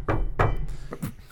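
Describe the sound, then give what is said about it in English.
Two heavy, thudding knocks on a door about a third of a second apart, followed by a couple of lighter, quicker taps, fairly loud with no talking. “That's the sound effect. Yeah. So I knock on his door.”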